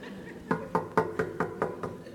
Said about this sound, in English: No, knocking is knocking. And then when you don't hear anything, you do that again, don't you?